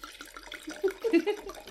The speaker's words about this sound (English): I will pour away. Put it in the glass.